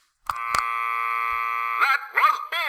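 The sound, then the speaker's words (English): A loud, flat electronic buzzer drones steadily for about a second and a half after two sharp clicks, then gives way to warbling, wavering tones near the end. “I want to keep the bullshit buzzer there anyway.”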